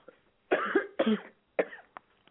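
coughing

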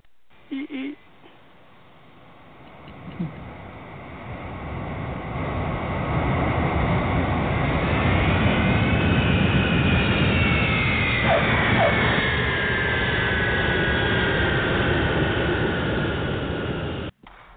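jet airplane landing

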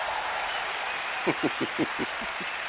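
round of applause

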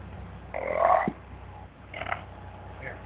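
burp

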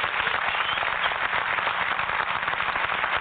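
audience applause

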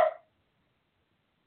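dog barking

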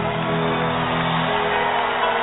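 audience shouting and cheering

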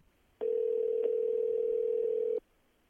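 telephone ringing tone

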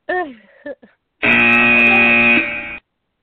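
buzzer being pressed

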